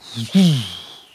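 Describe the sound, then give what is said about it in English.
A voice imitates a compressor with a fast release pumping and breathing on a room mic each time the snare or tom is hit: a short low hum, then a louder swelling vocal whoosh that slides down in pitch and fades out. “So I'm using the pumping and breathing. Yep. So that every time you hit the snare or tom, that room goes...”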